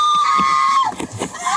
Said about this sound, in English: Now she's got a reason to scream. Now she has a reason to scream because that shit is bad. I've heard pepper spray is like one of the worst things that could happen to you.